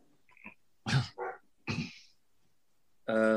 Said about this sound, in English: My neighbor's dog starts barking. That goddamn dog knows whenever I record anything because that's when he starts barking.